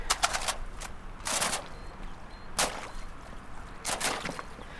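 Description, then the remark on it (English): Thin ice on frozen floodwater crunches and cracks under a walker's wellington boots in a steady walking rhythm, with sharp, brittle, metallic snaps every second or so and a faint watery slosh beneath as the water gets deeper; no talking. “Oh yeah, there's lots of flood water here and it's all covered in ice, so I'm going to see if I can”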